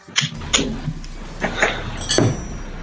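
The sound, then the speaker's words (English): Ice cubes clink and rattle into a drinking glass in a handful of irregular, bright knocks over a few seconds, with a soft low rumble underneath and no talking. “Okay, then you fill your glass with ice.”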